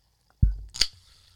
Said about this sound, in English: And I'm going to open this, lovely seltzer water.